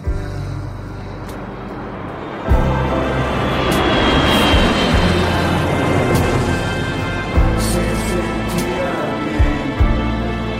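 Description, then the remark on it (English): Loud, steady engine roar of an airplane flying low overhead, its pilot greeting the kids, swelling after a couple of seconds and droning on, with a few dull thumps underneath. “The pilot of the airplane saying hi to the kids.”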